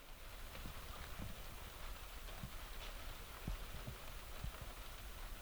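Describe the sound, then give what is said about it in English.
Steady, much-needed rain falls during a fishing trip in a continuous, even hiss, with scattered louder drops tapping irregularly on a surface. No voices are heard. “We drank a few more beers as the much-needed rain fell”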